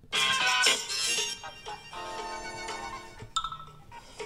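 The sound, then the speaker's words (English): A cell phone that is being dialed rings with a ringtone of the Sanford and Son TV theme tune: a bright, busy melody of rich musical notes, loud and heard alone without any talking. “I secretly dialed his cell phone”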